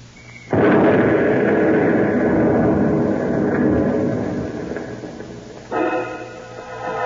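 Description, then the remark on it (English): A truck loaded with explosives explodes with a sudden, loud blast that rolls into a long, heavy rumbling roar, slowly fading before a quieter crackling burst near the end. No one speaks. “Shouldn't go near that exploded truck, Mr.”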